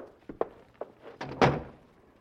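A few light knocks and shuffles lead into a solid thunk as a door is pushed shut, followed by a brief latch-like rattle fading out. No one speaks.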